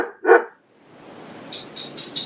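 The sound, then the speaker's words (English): A dog lets out two quick, loud barks at a watering can, then a rising hiss of background noise with a few bright, scratchy bursts follows. No one speaks. “What are you barking at? You're driving me insane!”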